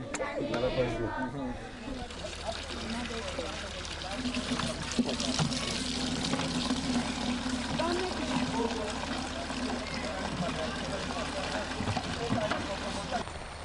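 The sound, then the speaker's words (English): Water pours and splashes steadily over an outdoor murmur of voices in Sierra Leone, with trickling and sloshing continuing throughout as water is scooped and poured for a family's daily needs. “An average day, Sierra Leone, tending water for the family.”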